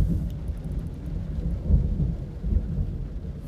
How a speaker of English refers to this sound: God dang, that's a loud ass thunderstorm. Holy smokes.